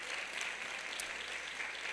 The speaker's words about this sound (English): Sisters, can we give the brothers, the fathers a hand clap?